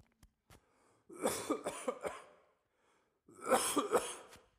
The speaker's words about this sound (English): I have to cough.